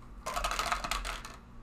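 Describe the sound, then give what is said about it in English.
Four dice, rolled for area-of-effect arrow damage, clatter and rattle across a hard surface in a dense burst of quick clicking knocks lasting about a second, fairly loud, with no voices. “But I'm going to roll these four dice twice.”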